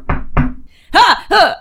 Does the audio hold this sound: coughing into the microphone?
no